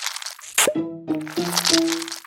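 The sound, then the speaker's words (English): An octopus climbing the glass of its tank and out of it at the International Aquarium of New Zealand: wet squeaks and suction pops mixed with crunchy crackling, repeating in a few uneven bursts with no voices. “That's the sound of Inky the octopus, who climbed the glass of his tank at the International Aquarium of New Zealand”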